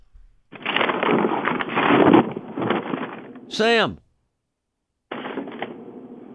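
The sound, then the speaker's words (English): Loud, crackling rustles fill about three seconds as someone picks up a piece of paper, then a voice says a single word. After a brief silence the scratchy rustling starts again. “No, I was just picking up a piece of paper.”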